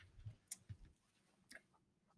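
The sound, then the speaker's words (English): Someone drinking water, heard as a few soft, low gulping thumps and a couple of sharp, wet clicks over about two seconds, quiet and with no talking. “Sorry, I got to drink some water.”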